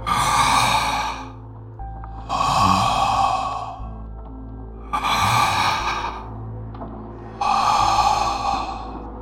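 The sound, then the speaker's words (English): Heavy, hoarse breathing of someone waiting at a door, four long raspy breaths drawn in and pushed out at a slow, steady rhythm, with no talking. “The handler waited there a few long seconds, breathing hoarsely, almost menacingly.”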